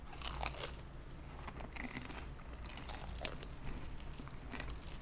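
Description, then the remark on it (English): Crunchy bites of fried chicken, a steady run of crisp crackling and chewing noises repeating irregularly over a few seconds, with no talking. “I feel like their fried chicken feels really light as well.”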